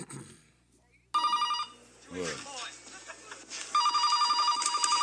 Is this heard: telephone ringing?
yes